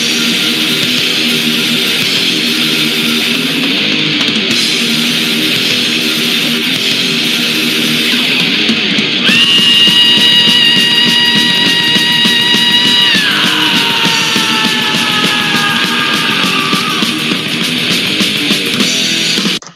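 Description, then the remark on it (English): Loud, distorted thrash metal with dense, driving guitars and drums, then a long, piercing high-pitched scream that holds steady for several seconds before sliding downward over the roaring band. “The most iconic scream in metal history.”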